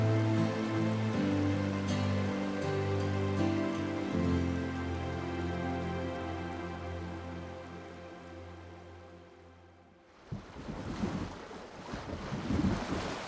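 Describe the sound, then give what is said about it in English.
A steady low engine drone hums for several seconds, then gives way to a loud wash of rushing water splashing and churning. No one speaks. “The rushing water, the emptiness of the landscape.”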